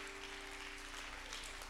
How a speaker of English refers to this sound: One more time, why don't you clap your hands unto the Lord and give him praise. Hallelujah.